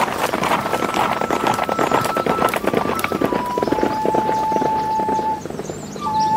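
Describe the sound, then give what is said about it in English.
Fast, steady drumming of the galloping hooves of Silver, the Lone Ranger's horse, a dense rapid rhythm that stays loud throughout, with a faint sustained musical tone running underneath. “Come on, Silver. Giddy up!”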